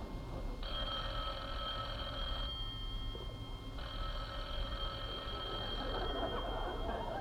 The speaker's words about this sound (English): the phone.